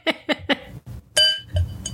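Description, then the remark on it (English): Glasses of wine clink together in a toast, clear: three quick light taps, then one bright clink whose pure ringing tone hangs briefly before fading. “Don't break your glass. What's going to happen? Cheers.”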